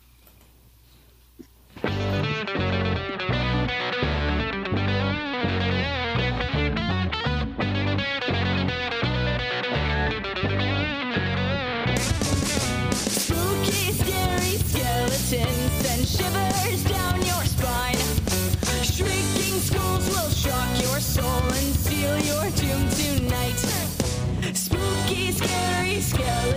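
A Halloween song plays loudly and steadily, with dense, driving instrumentation kicking in after a brief quiet start and growing brighter and fuller about halfway through.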